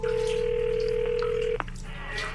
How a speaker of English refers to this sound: Mom picked up on the first ring.